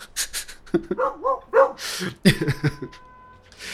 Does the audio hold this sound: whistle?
no